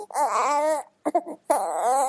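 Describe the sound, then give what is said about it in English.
A newborn baby boy cries loudly in two long wailing bursts, separated by a short gap of choppy, hiccuping sobs. “Oh, he is not very happy right now either.”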